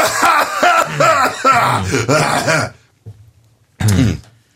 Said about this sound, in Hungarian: Mondjad be, hogy most mindenki halkítsa le, köhögni fogok. Igen, hiszen a számítógépén mindenkinek van köhögő gomb. Akkor figyelem, most egy 10 percet köhögünk, addig mindenki önkiszolgálóan tekerje le.